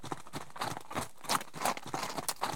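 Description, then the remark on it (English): Reindeer hooves trotting in a steady, rhythmic clip-clop as Dasher comes trotting up with his brothers and sister, sharp, bright knocks overlapping as several animals move together. Moderately loud, with no voices. “Anna went outside and whistled for Dasher, and he came trotting up with his brothers and sister.”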